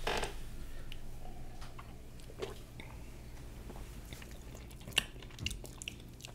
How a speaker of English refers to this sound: So it's a West Coast, but yeah, it's kind of like a sour. Yeah. It's got here, let me take another sip.